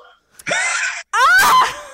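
A woman lets out a loud, authentic, visceral shriek in two bursts: a harsh, breathy cry followed by a higher, wavering scream that rises and trails off.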